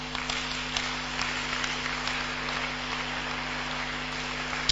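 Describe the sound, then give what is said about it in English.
A crowd claps steadily and continuously for several seconds, a dense, even patter of many hands with no voices, over a faint low electrical hum. “Father, those who are clapping, give them visa, give them money, give them favor, give them anointing, give them food, and everybody receive a blessing.”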